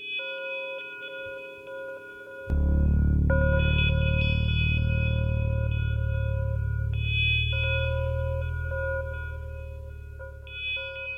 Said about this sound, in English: Wow. No, I have not. That sounds like an alien abduction or something. It sounds like aliens are coming to Earth. Yeah, that's one of the 3,628,800 chimes that will come out of a project called the 10,000-year clock, or the clock of the long now.